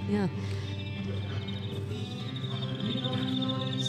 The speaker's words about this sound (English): Cricket's back. Yeah, I heard. We deserve it though. Damn cricket.